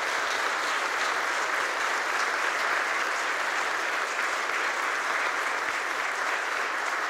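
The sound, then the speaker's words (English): A crowd applauds to tell the young people they will walk with them, a dense, even wash of many hands clapping that stays loud and unbroken for about seven seconds, with no voices standing out. “That means clap.”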